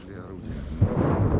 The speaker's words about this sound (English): As the explosions get louder, it's time to go. This is the road to Avdiivka.